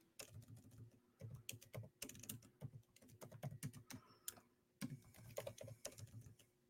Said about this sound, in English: Sorry, I was typing a banner so people could see what we picked.